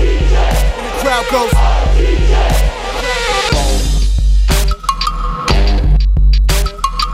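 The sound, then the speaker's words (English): A crowd-cheering sound effect played on the JV Show: a loud crowd roars and cheers for several seconds, a dense wall of noise, then gives way to sustained, horn-like tonal blasts in short bursts. “And the crowd goes.”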